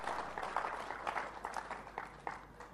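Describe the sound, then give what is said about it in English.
A church audience claps for God during a sermon, a dense patter of many hands with brighter individual claps popping out, sustained at moderate loudness throughout with no voices. “Give God a clap.”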